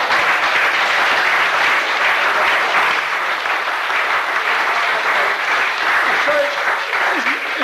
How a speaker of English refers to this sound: Isn't he a nice looking lad, isn't he? Give him a clap.